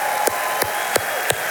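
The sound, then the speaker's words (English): An audience claps together in a steady rhythm, four sharp, even claps about a third of a second apart over a continuous murmuring background, putting their hands together to bless the Lord. “When I say, come on, let's put our hands together and bless the Lord, we're welcoming the king.”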